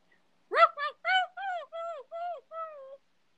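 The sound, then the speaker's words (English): A person's voice imitates a whining dog as a sound-effect clue in a guess-the-viral-video game: seven short, high-pitched whimpers in a quick steady series, each bending downward, moderately loud, with no other sounds around them. “it's the specific sound that I'm making as the dog. Whining? Yes.”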